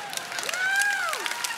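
An audience claps in a steady, dense patter of many hands, moderately loud and continuous, while a long rising-then-falling whoop rides over the applause.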